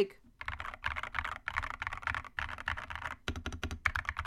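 Rapid, continuous typing on a computer keyboard, with dense clicky keystrokes in quick bursts and brief pauses, ending in a few separate sharp key taps.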